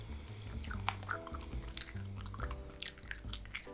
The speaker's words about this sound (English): Chewing noises. Chewing noises.